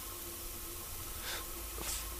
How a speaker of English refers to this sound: So that was the inside of a clicking, clucking cistern.